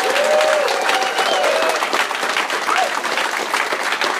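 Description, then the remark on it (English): A round of applause from a crowd on The Adam Ritz Show: dense, steady clapping that fills the whole clip at a strong, even level, with a few faint whistles or cheers mixed in. “Let's give yourselves one more round of applause.”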